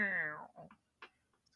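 A single drawn-out meow with a falling pitch, fairly loud, likely a person's voice imitating a cat, followed by a few faint clicks and soft sounds.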